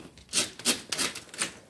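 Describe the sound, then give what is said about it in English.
Window blinds being closed, heard as about four quick rasping, scraping swishes in an uneven rhythm, each bright and hissy, with no talking. “Let me hurry and close my blinds.”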